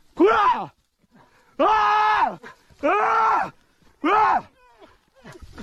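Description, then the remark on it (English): A man screams in fear at a black bear, four loud, drawn-out cries, each lasting about a second, separated by short pauses with faint background noise, raw. “That guy screamed.”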